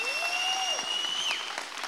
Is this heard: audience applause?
yes